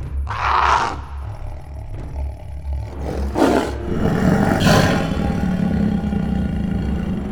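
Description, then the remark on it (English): A loud, echoing creature roar erupts in several surging bursts over a deep, rumbling low drone, the sound swelling and reverberating as if it comes from all around. “A much louder re immediately followed by a roar reverberated from all directions.”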